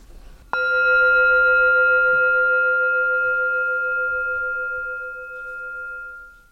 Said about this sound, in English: Okay, shall I ring my gong? Do it.